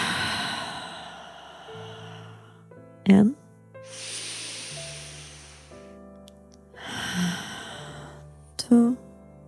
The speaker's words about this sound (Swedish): Så verkligen börja bara hitta en lite djupare andning. Andas in genom näsan. Och kanske andas ut genom munnen. Så vi gör 3 andningscykler. Där vi andas in genom näsan. Och vi andas ut genom munnen.